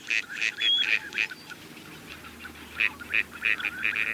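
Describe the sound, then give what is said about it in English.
A gadwall duck gives a rapid series of short, nasal calls in two bursts, about five notes each, separated by a brief pause, clear. “Many ducks are expert dabblers, including mallards, teal, and this gadwall.”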